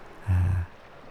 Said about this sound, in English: A great silence and stillness, just lapping with water. And the great kind of low frequency of this huge water mass out in front of you. For a few hours every week, I think I was the only person on the shores of Lochney.